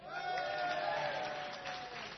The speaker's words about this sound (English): Give her a cheer.